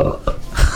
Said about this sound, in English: was that a belch?